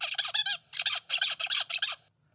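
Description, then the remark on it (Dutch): A zebra finch gives a stuttering call: about six loud, harsh nasal squawks in quick, uneven succession, some bursts clipped short, ending abruptly in silence. No voices are heard. “Dit is een stotterende zebravink.”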